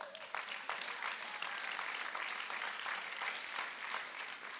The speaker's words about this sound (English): I hope the West Side clapped better than